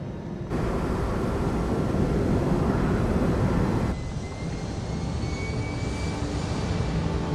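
A loud, steady jet-engine roar of an airliner flying low over a stadium fills the whole stretch, shifting tone partway through as a thin whine rises above it. No voices.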